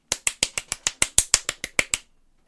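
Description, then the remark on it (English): A rapid, steady series of about a dozen loud, sharp knocks on a door, evenly spaced over two seconds, then silence, demonstrating an exaggerated knock with more knocks than needed and far louder than usual. No voices. “Just repeated the loud knocking.”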